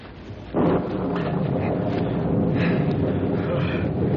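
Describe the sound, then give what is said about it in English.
A loud storm of wind and rain swells in abruptly after a brief quieter moment, then holds as a steady, dense roar with a low rumbling undertone and no voices. “Storm's about on us. Look over there, a cave. Just in time. We can hide in there out of the rain.”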